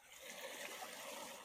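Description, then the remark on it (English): Water trickles in a steady, continuous stream, a soft splashing hiss that stays even throughout, with no voices over it. “Can you drink this water? No. Why not? Is it tainted? I wouldn't drink it. Contaminated? Here, can you hear it?”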